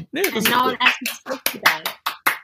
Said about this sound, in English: You get applause as well.